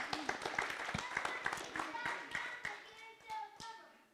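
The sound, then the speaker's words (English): A group claps in quick, uneven bursts while excited voices cheer and call out over the top, the clapping fading and the voices carrying on toward the end. “Hey, I want a cheering squad like that.”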